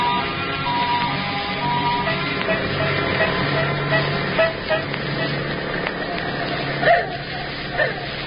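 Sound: car driving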